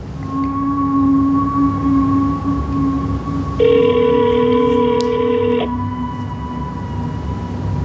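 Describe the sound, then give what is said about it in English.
A single electronic ringback tone from an outgoing phone call sounds for about two seconds, buzzy and steady-pitched, over a continuous low hum and faint sustained tones that run through the whole stretch. No one speaks. “So I tried to call him.”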